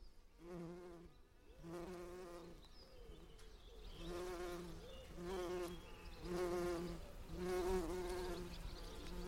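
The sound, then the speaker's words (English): Several bumblebees, including a tree bumblebee, buzz steadily among flowering painted sage (clary sage) in purples, pinks and whites, their droning hums rising and falling in pitch as they pass back and forth among the flowers, with no one speaking. “There are bumblebees all over us, and it's sort of purples and pinks and whites.”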